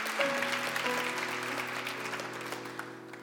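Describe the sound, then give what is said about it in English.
Sustained applause from an audience, a dense wash of many hands clapping at steady loudness for several seconds, with sustained low organ or keyboard tones holding underneath. “If you're going to clap, you might as well go all out.”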